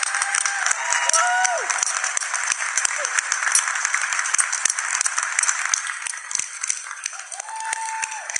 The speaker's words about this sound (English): But of course, none of this would have been done if it hadn't been for all of you. So please give yourselves a round of applause.